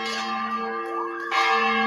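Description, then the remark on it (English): A large chapel bell on a college campus rings loudly, its deep sustained tone humming richly, with a fresh strike landing near the end to renew the ringing, shortly after Gonzaga beat St. Mary's. “They've got this chapel on campus, and they've got this big old bell.”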